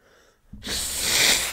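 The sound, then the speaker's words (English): A single loud sneeze, starting with a brief quiet breath and bursting into a harsh, breathy blast that trails on for about a second. “I hate when I sneeze and it fucks up.”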